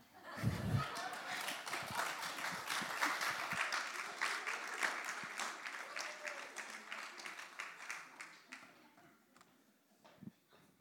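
Loud, dense applause as a guest exits, with many overlapping claps that swell early, hold steady, then gradually thin out and fade toward the end, with a few scattered claps lingering.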